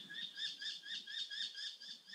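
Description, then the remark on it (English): A soft, steady series of high chirps repeats about four times a second, like a small bird calling over and over outdoors, faint and alone with no voices. “You could be just as content sitting here listening to the birds as being on fill in the blank, cruising in Venice, sitting at a fabulous concert, being in the arms of your lover, etc.”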